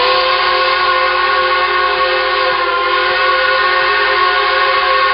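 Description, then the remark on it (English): A loud, sustained steam train whistle from the moving Polar Express blasts continuously with rich harmonic tones, steady for several seconds, with faint mechanical rumble underneath and no voices. “The Polar Express let out a loud blast from its whistle.”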